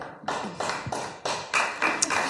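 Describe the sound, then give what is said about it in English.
A short burst of applause from a small audience after a speaker criticises lawyers, with claps landing in a loose, steady rhythm about three times a second. Moderately loud, with no voices. “So that's how a Conservative gets applause, by criticising lawyers.”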